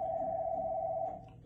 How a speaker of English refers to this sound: Church phone's ringing. Sorry about that.